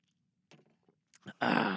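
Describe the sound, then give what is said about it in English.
A few faint wet clicks and small sounds, then a loud, sustained airy slurp as someone sips water, with no talking. “Okay, but before we get there, we're going to do a sip of this fine, high-quality H2O.”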